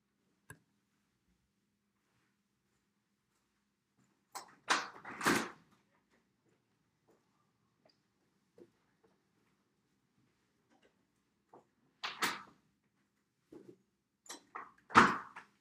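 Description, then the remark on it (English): After a knock, a door opens with a clunk and rattle to collect a package, followed by quiet shuffling and a few soft ticks, then the door is pushed shut with another pair of solid thuds. “Someone just knocked on my door. I believe I have a package. Anyways, I will get that package here in a second.”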